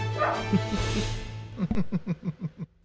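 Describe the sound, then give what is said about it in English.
A dog lets out a quick run of about eight sharp, rhythmic barks, with a brief rustle and a faint yip just before the barking starts. “Bonus bark.”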